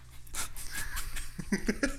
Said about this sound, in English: Oh shit, I just snorted on the podcast.